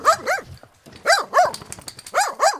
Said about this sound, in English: ran around her legs and barked and followed her upstairs, his tail wagging all the time.